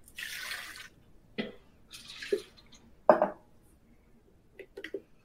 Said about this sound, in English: Now pour that into your blender that already has the ginger and peppercorns.